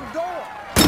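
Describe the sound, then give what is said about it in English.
A brief voice sound fades out, then a car door that would not close is slammed shut once, loud, with a sharp heavy impact near the end. “The bloody door won't close!”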